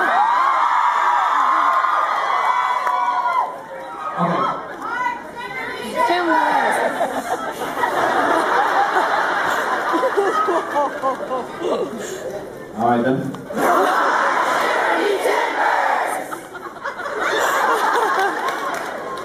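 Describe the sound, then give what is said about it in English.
A large live crowd screams and cheers continuously, with loud rising whoops cutting through the roar at several points. The noise is dense and sustained, dipping only briefly before swelling again. “I want you to just keep screaming, it's great.”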